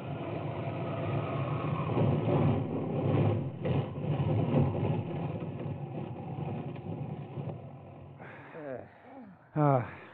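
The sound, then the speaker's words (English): A small plane engine roars roughly and unevenly, sputtering and surging for several seconds before dropping away, then a few short, wavering tonal bursts as it dies out. The motor sputters for the last time as the plane glides almost noiselessly to a landing on the desert floor. “Finally, the motor sputters for the last time, and you guide the plane almost noiselessly to a landing on the desert floor.”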